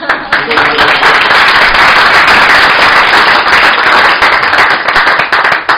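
A crowd at the Study Center breaks into sustained applause for the guest who hosted the week, a loud, dense wash of many hands clapping at once that holds steady for several seconds.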